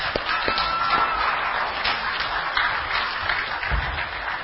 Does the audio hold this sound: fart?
no